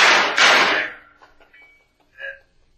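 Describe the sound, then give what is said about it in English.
Two loud, heavy knocks strike the back door in quick succession, followed by a quiet stretch with faint small clicks and a brief higher-pitched sound near the end. “Hey, what is this, a rest stop? It's the back door, Sam.”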